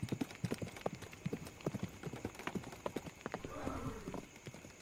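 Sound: horse galloping hooves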